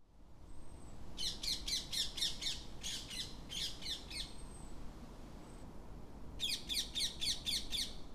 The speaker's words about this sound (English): Ringnecked parakeets are very, very noisy, and their call is a shrill, screeching noise.